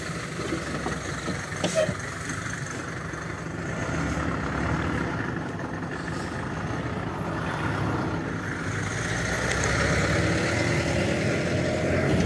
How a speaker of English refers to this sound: Right now I'm uploading the, hold on, some bus stopped and I'm walking by the bus. Hold on.